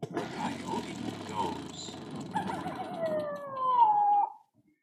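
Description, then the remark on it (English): A person imitates a coyote howl, a loud drawn-out wailing tone that swells and then slides downward before cutting off, preceded by a few seconds of murmuring voices and background noise. “Coyote.”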